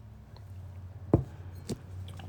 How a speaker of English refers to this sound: I'm going to take a sip.